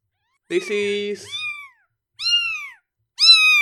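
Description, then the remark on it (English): A kitten known as number 3 meows three times, each cry high-pitched and falling off at the end, fairly loud, with short pauses between them. A brief low human voice sounds just before the first meow. “The best part is, once they start making that cry, Eris just looks at me like, give it back.”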